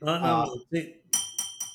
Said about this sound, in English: There's your clink. Yep, no, it doesn't work with aluminum on glass. Just a sad dunk.